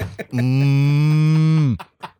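A single long, steady cow moo, loud, holding one low droning pitch for over a second before dropping off abruptly, with brief faint noises before and after.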